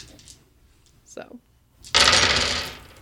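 A handful of dice rattles briefly, then tumbles onto a surface in a dense clattering burst lasting about a second before quickly settling.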